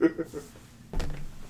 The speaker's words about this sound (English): Like, what do you think you're getting? The knock.